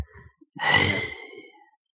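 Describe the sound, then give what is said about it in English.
A single heavy, breathy exhale blown close into a microphone, a loud airy whoosh lasting about a second before trailing off. No one speaks. “You're breathing in the mic. It was really vibrating my ears.”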